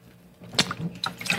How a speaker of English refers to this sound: let me get a drink of water.